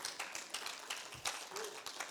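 A church audience claps for the speaker's daughter in a steady, scattered patter of many hands for a couple of seconds, fairly soft overall, with no clear speech over it.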